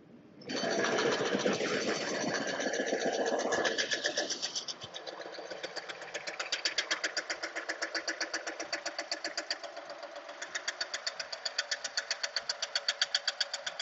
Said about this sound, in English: Jackhammer, breaking down cement blocks.